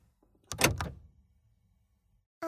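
A car's door locks actuating by mistake instead of opening: a short mechanical clunk-and-whir burst, followed by quiet, then a brief voice starting at the very end.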